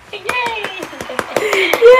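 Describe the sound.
Hands clap in a quick, steady run of about eight or nine sharp claps while voices cheer over them, the cheering swelling louder toward the end.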